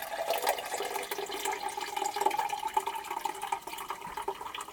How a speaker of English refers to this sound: Oh, hello, that's the water, and this is this.